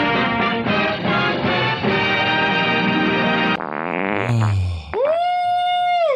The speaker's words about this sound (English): Oh, I farted.